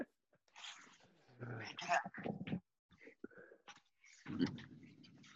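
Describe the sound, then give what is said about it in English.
A female dog whines and grumbles in a series of uneven bursts as she waits to be let out, her high, nasal cries rising and falling with short pauses between them. “I'm just gonna let this dog out because she's doing it.”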